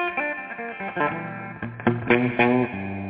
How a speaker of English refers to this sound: Crazy echo from the other room.